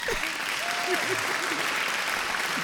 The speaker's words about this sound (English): I was trying to get the studio claps because I was going to clap for you for going on a date. Now that I finally got it.